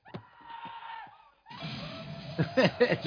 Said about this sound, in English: Random girl screaming.